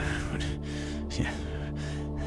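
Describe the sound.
A voice imitates frustrated breathing: a run of heavy, strained gasps and huffs, steady and fairly loud across a couple of seconds with no words.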